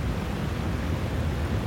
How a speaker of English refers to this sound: The sound is the usually docile Blanco River beginning to swell. And it kept coming and coming, and within about 2 or 3 minutes, it was now up into the garage.